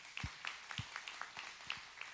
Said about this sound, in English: So thank you. We appreciate our safety team. Can we bless our safety team with a hand clap?